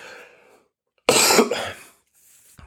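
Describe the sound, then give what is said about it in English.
A single harsh, loud cough from a person who has been a bit sick recently bursts out, preceded by a quieter throaty sound and followed by a brief breath or throat-clearing noise. “I was hoping to not cough on this podcast, but there you go.”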